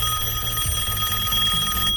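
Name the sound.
telephone ringing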